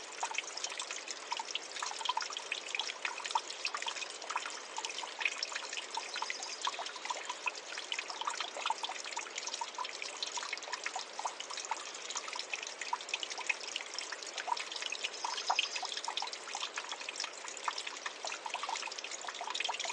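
A creek trickles and babbles steadily, a continuous bright splashing of running water with no voices, holding an even level throughout.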